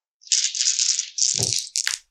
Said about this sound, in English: Roll them dice.